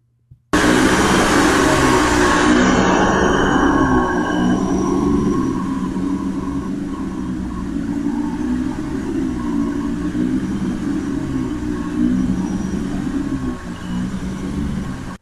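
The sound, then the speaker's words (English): A household vacuum cleaner starts up abruptly and runs loud and steady for the whole stretch, its motor whine settling into a constant droning roar, with no talking. “It's a vacuum. Vacuum it is.”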